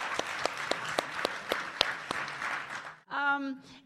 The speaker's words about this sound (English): And also, I would like a final round of applause for our fabulous audience, which you guys raised such amazing questions that were perfectly in line with the way we imagined this.